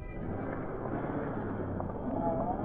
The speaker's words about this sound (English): When the sound of Roger's departing car had faded